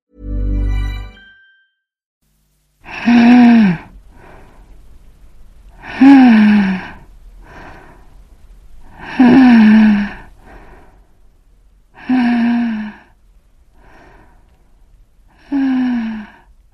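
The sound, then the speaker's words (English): Shallow, labored breathing of a dying woman in a hospital room: five loud, raspy, groaning exhalations come at a slow, steady pace about three seconds apart, each followed by a faint, short inhale, with no talking. “She'd gone on like that, breathing like that, day after day for a week.”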